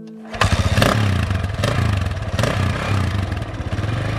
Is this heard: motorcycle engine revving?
yes